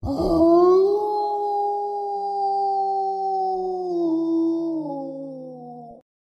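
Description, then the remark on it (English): A single long, eerie werewolf howl rings out loud, holding steady for several seconds before sliding slowly downward in pitch and cutting off, with no talking around it. “Your body thuds to the ground, and the creature takes a piece of your face and releases a horrific howl.”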